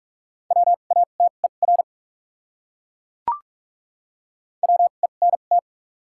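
Fast Morse code at 45 words per minute with double character spacing, in a steady mid-pitched tone, keyed as two short common words of quick beeps separated by a pause with a single faint click between them. No voices.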